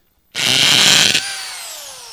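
A corded power drill, plugged into a power source on a stage, whirs loudly for about a second as its trigger is squeezed, then its motor winds down with a fading, descending whine as the trigger is released. No one speaks.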